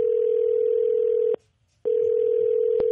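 A phone line rings on an outgoing call: a loud, steady electronic tone drones, cuts out briefly for about half a second, then resumes. No one speaks.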